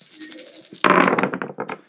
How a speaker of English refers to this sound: A solid 28. Beautiful. Famous Cats taking it. By the way, I rolled a 28 on a D20, so you figure that out.